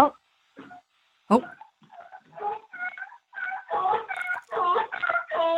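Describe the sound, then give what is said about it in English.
A horse named Blocky honks in a run of short, nasal, harmonic calls, scattered and softer at first, then louder and in quick succession toward the end. “I've been trying to get him to honk with my phone ready.”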